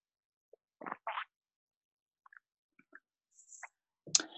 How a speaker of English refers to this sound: Make sure you have some water on hand. And speaking of which, if you have it, take a sip with me.